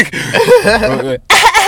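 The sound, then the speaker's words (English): A loud, raspy coughing fit after taking a hit while smoking a hybrid strain: strained, voiced hacking for about a second, then a short pause and another harsh burst of coughing. “Stop coughing, bitch.”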